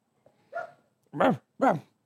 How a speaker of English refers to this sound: All these dogs just start barking out of nowhere.